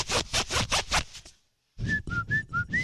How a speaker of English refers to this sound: Okay, you got to get the zipper really close to the microphone. Here it is. Ready?